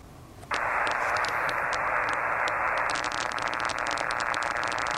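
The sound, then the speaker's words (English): Harsh radio interference noise on the 80 meter shortwave band kicks in abruptly after a quiet moment, a loud steady buzzing hiss peppered with rapid crackling pulses that continue throughout without any voices. “this is an 80 meter noise right here from N4RZ”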